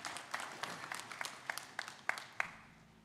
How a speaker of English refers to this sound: That's okay. We can clap.